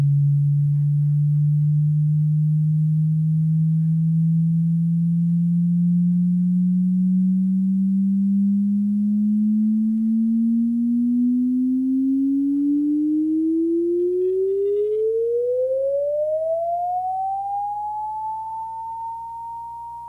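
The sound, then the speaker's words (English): Gravitational wave sonification of a fast-spinning black hole: a loud, pure tone that glides slowly upward from a low hum, climbs faster near the end, then levels off high without a final chirp. “So we had a really fun surprise when we finally worked out what happens when the black hole spins really fast. Here's what it sounds like.”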